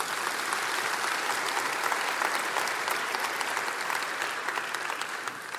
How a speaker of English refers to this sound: You can clap, that's powerful.